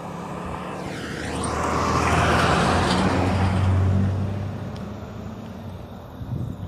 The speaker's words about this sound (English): Hold on one second, guys. There's a school bus coming.